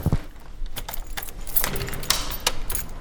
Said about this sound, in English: Can I just record you locking the door? Is that okay?